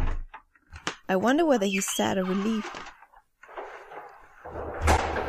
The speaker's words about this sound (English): She just left the apartment, slamming the door and running down the stairs, leaving as much noise as possible.